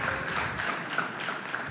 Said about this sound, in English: I think we can applaud that. That was phenomenal.